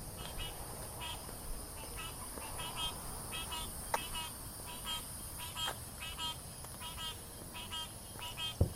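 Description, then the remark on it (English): A steady night chorus of insects buzzes and trills continuously, with repeated pulsing frog calls and occasional sharp clicks layered over the dense, even drone. “So there's lots of bugs. And there's this kind of honking sound.”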